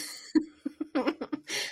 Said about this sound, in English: She's currently coughing.